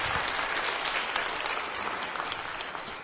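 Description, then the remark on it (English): A crowd applauds steadily for about three seconds, many hands clapping at once in a dense, even roar with scattered sharper claps and no voices. “Would you give them all an applause?”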